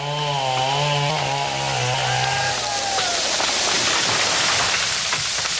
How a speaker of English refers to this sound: But wait, as I made this story, I saw on Friends of the Forest Facebook page that the chainsaws had already started.